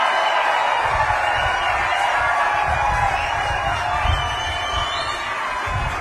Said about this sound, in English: It's a lot of applause.